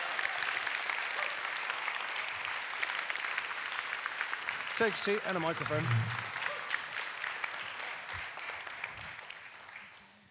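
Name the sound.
audience applause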